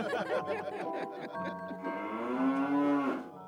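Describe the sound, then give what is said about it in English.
A loud, drawn-out cow moo, rising and holding for about a second and a half before cutting off, preceded by a brief burst of voices. “Was that a cow?”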